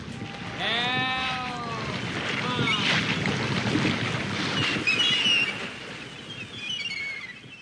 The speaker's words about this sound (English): Help. Help. Waterfall, waterfall. Turn off the bubble machine.